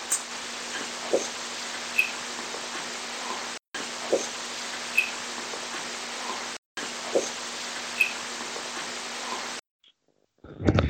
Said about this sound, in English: because it literally sounds like a heartbeat.